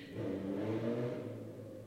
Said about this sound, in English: Let's just wait for this lovely motorcycle.